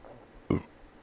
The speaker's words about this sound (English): Oh. By the sound of that burp.